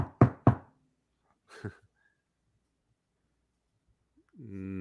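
Three quick, solid knocks on a door ring out, followed by a softer single thump and a long quiet pause before a voice starts in at the very end.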